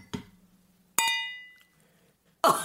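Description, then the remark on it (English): A bright glass clink from glasses raised in a toast rings out and fades over about half a second, after a soft tap, followed by a harsher clattering burst, with no talking. “And that's why we drink. Cheers.”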